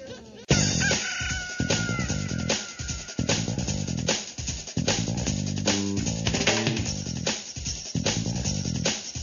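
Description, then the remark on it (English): Loud chickens cluck busily without pause while a rooster crows over them, the barnyard racket starting abruptly and filling the whole stretch with no talking. “No, I want to be the chicken.”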